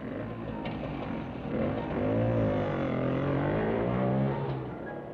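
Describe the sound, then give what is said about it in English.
A motorbike engine runs steadily while a couple goes for a spin on it, its pitch rising and dipping as it revs, with a continuous mechanical hum that stays moderately loud throughout. “they like to go for a spin on Eric's motorbike”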